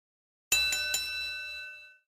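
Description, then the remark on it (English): A doorbell rings once with a bright chime, struck in quick repeated tones near the start, then its ringing fades out over about a second and a half. No one speaks. “Yep, that's the bell, John. I heard the bell.”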